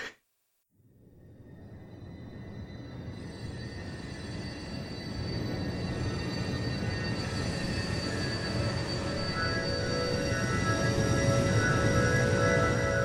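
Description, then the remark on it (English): A sustained organ-like drone opening a song swells up from near silence and slowly builds in loudness and density over several seconds, thick and steady, with no voices. “It was like that kind of organ drone thing.”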